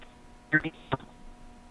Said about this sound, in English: Yeah, it's sounding like digital dropout or something. And I don't know. Oh, okay. I don't know if that's the phone system here or your phone.